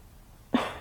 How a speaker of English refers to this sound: Excuse me, I felt a little burp coming on there.